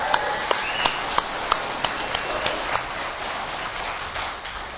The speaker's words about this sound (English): How about another round of applause for the worship team?